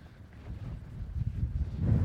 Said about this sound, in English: It really is very windy. Oh, it's beautiful. Cairnpapple Hill is a shrine in the sky.